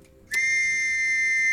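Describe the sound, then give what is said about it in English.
Air brakes of an old lorry parking for a delivery to a local shop let out a sudden, shrill whistle after a moment of quiet, holding one steady piercing tone loudly to the end with no voices. “I think it was an old lorry with very noisy brakes that almost whistled when they went on, basically.”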